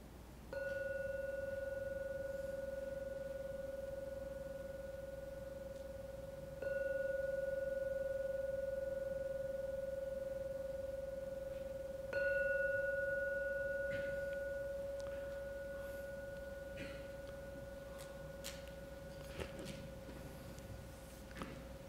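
A gong is struck three times to end a meditation, several seconds apart, each stroke blooming into a steady, humming mid-pitched tone that lingers and slowly fades. No voices are heard.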